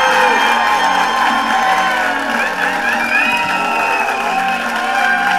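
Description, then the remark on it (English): A large audience claps and cheers steadily for a comedian's introduction, with whoops and shouts rising over dense, continuous applause that stays loud throughout. “I'm like, boy, they're clapping hard for my intro, man!”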